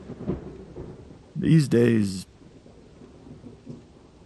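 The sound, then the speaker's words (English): Steady rain hisses throughout, broken about a second and a half in by a short, loud crash of thunder that fades back into the patter. “he stared out into the rain.”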